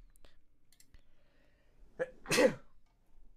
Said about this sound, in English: Bless you. Bless you.